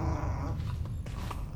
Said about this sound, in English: The little robo-dog skidded to a halt just short of the woman's feet. He barked excitedly and smudged his oily paws all over her already quite oily single suit.